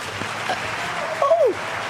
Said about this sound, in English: Where did the clapping come from? I've never had clapping before. So awesome. The crowd goes wild. Yeah. Make a movie. Everyone at Roberta's is cheering for us.